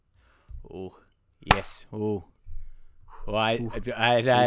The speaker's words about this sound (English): I just got that clap 7 seconds later.